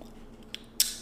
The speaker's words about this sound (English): That was a very loud crunch.